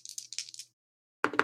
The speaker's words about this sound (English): That's pretty good. That's 10 on the dice, plus 1 is 11.